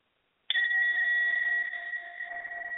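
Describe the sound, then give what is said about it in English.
After a moment of silence, a breath bowl is struck once to help move energy and rings out with a bright, steady metallic tone and layered overtones that slowly fade. No one speaks. “I'm going to be using one of my breath bowls to help to move energy just for a moment.”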